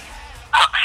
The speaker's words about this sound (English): Ring, ring, ring, ring, ring, ring.